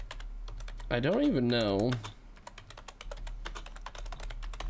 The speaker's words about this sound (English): I'm typing all this bullshit in and it won't even let me fucking look for it.